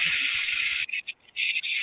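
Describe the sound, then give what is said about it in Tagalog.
Water runs from a faucet in a steady, bright hiss, then sputters into uneven bursts with brief gaps before flowing again. No one speaks. “Ang correct answer, faucet.”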